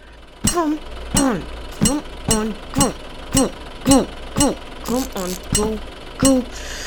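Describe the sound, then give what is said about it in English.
A voice imitates a repaired spaceship engine running, with about ten evenly spaced, throaty putt-putt bursts in a steady rhythm, fairly loud over a low background hum. “I applied a bit of the old technical green thumb to the engine, and it's purring like a two-headed cat now.”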